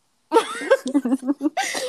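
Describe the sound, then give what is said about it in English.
A voice imitates a stifled cough, as if trying hard not to cough: a strained vocal onset, then a quick series of four or five choppy, muffled bursts held back in the throat, ending in a breathy exhale, fairly loud. “And so I was like sitting there like trying so hard not to cough to like not seem cool.”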